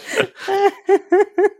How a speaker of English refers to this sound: You don't think that I can tell the difference between a real sneeze and a fake sneeze?